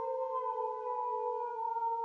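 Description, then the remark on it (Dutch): A wolf, answering a person's imitated wolf howl, gives a long, sustained howl that holds a steady, mournful pitch for about two seconds, heard on its own with no voices and only faint background hiss. “Het drong al gauw op mij door dat het alleen maar een wolf kon zijn die reageerde op mijn huil.”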